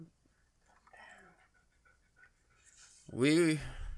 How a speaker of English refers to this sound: Sorry if you guys don't like the sound of dog breathing, but I think you're going to have to get used to it on this episode.